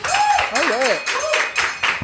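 Steady applause fills the whole moment, a dense wash of clapping with a few rising and falling whoops and cheers cutting through it.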